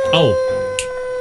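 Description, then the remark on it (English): A person gives one brief howl in imitation of a wolf for National Howl at the Moon Day, a short voiced cry sliding down in pitch, followed by a quiet moment over a steady background hum. “Well, let's hear your howl”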